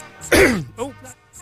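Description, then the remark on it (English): A single loud cough bursts out with a harsh, raspy edge, followed by a few faint vocal noises trailing off. “I just coughed into the ear.”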